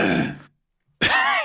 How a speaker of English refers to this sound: What a wonderful cough you have. That sounded nice, right?